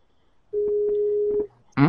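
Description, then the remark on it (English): A Skype call ringtone sounds as a single steady electronic tone lasting about a second, clear and fairly loud, followed shortly by a brief burst of a voice. “That's somebody Skype.”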